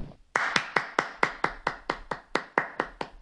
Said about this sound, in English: I only really remember the part that everybody loves, which is everybody clap your hands. Hold on, I'm gonna do it.